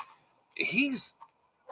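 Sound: dog barking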